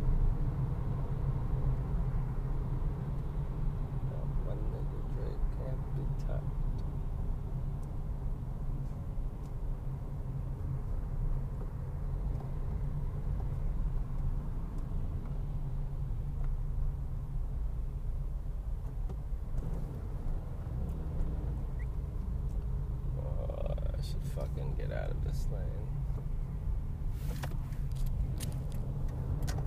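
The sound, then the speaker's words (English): Steady low rumble of a car moving along a road into Orange County, where the traffic starts, with constant engine and tire noise and occasional brief higher-pitched sounds from passing traffic. No one speaks. “County now, and that's where the traffic starts.”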